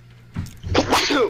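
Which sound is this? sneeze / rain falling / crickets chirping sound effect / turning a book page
sneeze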